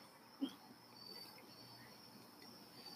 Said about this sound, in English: Just want to let that soak in for a few moments, those lovely crickets here in the Gold Coast region of Connecticut.